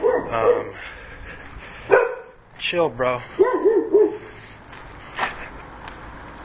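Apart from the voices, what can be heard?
dog barking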